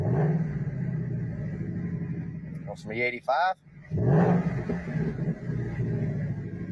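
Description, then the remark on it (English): A car engine idles with a low rumble, then revs up sharply in a brief burst before settling back, as if in reply, while a man talks to his car about gas prices. “This guy has a conversation with his car about it.”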